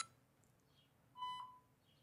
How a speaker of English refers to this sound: Let me hear everybody's beep sound to make sure everybody's loud enough.